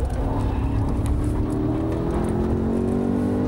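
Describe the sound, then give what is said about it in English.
A street car's engine revs steadily upward as it accelerates on a race track course in Long Beach, its droning pitch climbing continuously over a few seconds, loud with a constant rumble underneath and no voices. “I mean, I've been running around the race cars, and it's exactly as fast as that Porsche car that I'm running with.”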